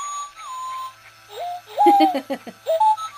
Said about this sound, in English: plushie that actually spins around and makes his little beeping sounds. Oh, should I put him on? Oh, there he is.